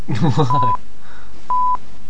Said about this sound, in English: You see, that's going to be quite boring, basically. It's going to be about 30 seconds of silence with a few beeps at the end.